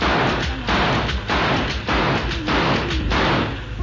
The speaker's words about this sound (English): Chihuahua! Those bullets stopped the rest of that wolf pack.